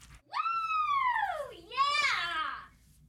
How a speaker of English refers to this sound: How come when I'm randomly mentioning the mailbag, the scream is always there, but when it's mailbag time, you guys are like, oh, where's the scream?